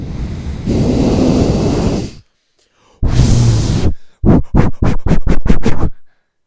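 Loud nasal exhalations: two long forceful breaths out through the nose, then a quick run of about seven short, sharp puffs in rapid rhythm, with no talking.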